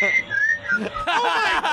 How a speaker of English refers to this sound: Are those the dicks whistling? Let me see.